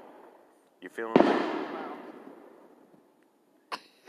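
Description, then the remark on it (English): A single loud Fourth of July firework bang, set off from houses up on Toad Mountain, bursts out and rolls off into a long, fading rumble lasting a couple of seconds. Brief bits of speech come just before the blast and again afterward. “Thunder everywhere.”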